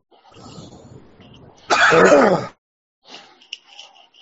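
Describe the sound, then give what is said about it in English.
A single loud, sharp sneeze bursts out, preceded by quiet murmuring and followed by faint shuffling and small clicks. “Bless you”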